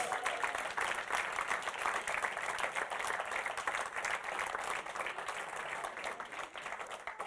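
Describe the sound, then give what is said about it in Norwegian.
An audience applauds steadily for the sound technician, a dense wash of many hands clapping at an even level throughout, with no talking over it. “Skal vi gi han en applaus der han sitter?”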